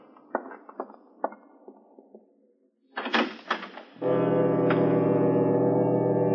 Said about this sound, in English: I opened the door of the study and walked in.